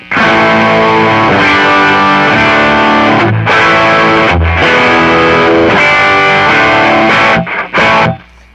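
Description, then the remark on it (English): Heavily distorted electric guitar, a custom Telecaster played through a brand-new stock Hot Rod Deluxe amp on its distortion channel, plays loud, sustained chords with a thick, saturated tone, broken by a few brief pauses and ending in quick stabs before cutting off. “I got it set because the distortion channel is awesome.”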